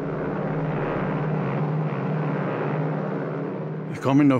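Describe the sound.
A Condor propeller airplane carrying more than 20 passengers takes off in darkness and bad weather, bound for Spain; its engine drones steadily and loudly for several seconds, a low rumbling roar, before a man's voice cuts in briefly at the end.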